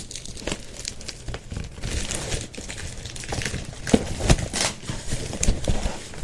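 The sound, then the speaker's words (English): Crinkling and snipping as a mailed plastic package is cut open with scissors, a steady run of sharp rustles and crackles with a few louder tearing bursts and no talking. “You got scissors? I did. I don't know where I put it.”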